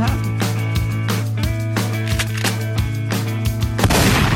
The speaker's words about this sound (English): I was so excited about my new gunshots. I'm going to do this shotgun one more time.